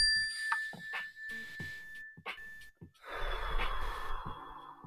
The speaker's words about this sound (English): So when you hear the mindfulness bell, we do the mindfulness bell at the beginning of each show. When you hear the mindfulness bell, everybody just take a deep fucking slow breath, okay? Ready? Here we go.